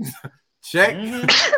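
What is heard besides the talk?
sneeze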